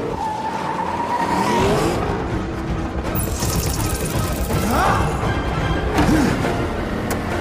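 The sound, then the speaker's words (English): A car driven by a remote driving system, in a scene from Black Panther, roars along at high speed, its engine loud, with tires squealing and skidding in several sharp bursts as it swerves and corners. “Remote driving system activated.”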